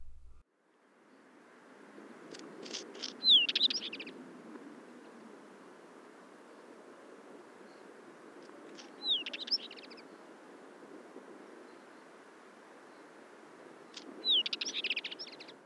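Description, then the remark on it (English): Three short bursts of a wheatear's call, a thin whistle followed by hard chacking notes like wee-chat-chat, spaced several seconds apart over a steady windy background hiss. “The clear wee-chat-chat call is often heard in upland areas where the bird is usually found.”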